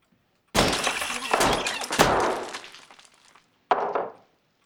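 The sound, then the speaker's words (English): A gavel repeatedly smashes a dictaphone, loud: three heavy crunching blows with cracking, rattling debris, then a short pause and one final violent strike. “And then the smashing sound is Oliver Babish picking up his, as he puts it, his big hammer, which is a gavel given to him by, like, some famous judge, and smashing the dictaphone violently and perfectly comedically timed.”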